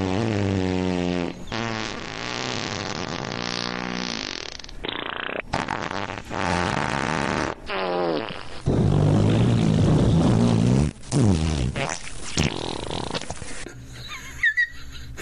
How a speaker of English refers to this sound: Where did you have that many different sounds of farts? I actually have about 30 minutes worth.